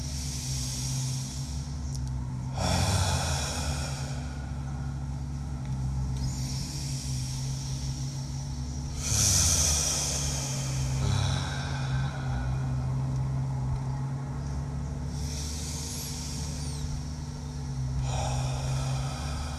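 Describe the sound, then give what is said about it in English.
Slow, deep breaths drawn in and pushed out several times while rubbing along the bladder meridian, each a soft airy rush separated by short pauses over a steady low background hum. “Rubbing on the bladder meridian, breathing in, and releasing the emotion of paralyzed will.”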